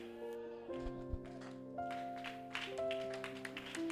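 Hands clap in a steady rhythm over sustained, held musical tones, with the claps growing more frequent and prominent in the second half.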